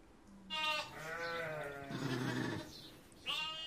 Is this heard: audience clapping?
no